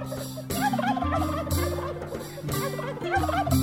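Turkeys gobble in quick warbling bursts, close and fairly loud, layered over a steady musical backing with a bass pulse that repeats about every half second.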